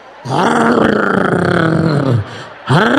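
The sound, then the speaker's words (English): A voice imitates a tow truck engine with a loud, gravelly growl held for about two seconds that sags in pitch as it fades, then a second growl starts, climbing upward. “What's that tow truck noise?”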